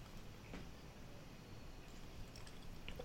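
drinking water

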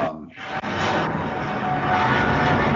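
airplane flying overhead

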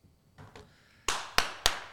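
hand clapping applause

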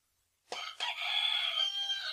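rooster crowing

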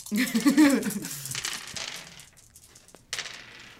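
dice being rolled

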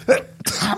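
sneeze

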